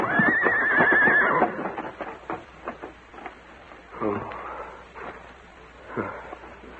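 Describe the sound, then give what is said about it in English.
A loud horse whinny rings out for about a second, followed by irregular hoof clops and snorting that fade in and out, with a couple of louder thuds later. “Well, there's a limit to what a horse can do.”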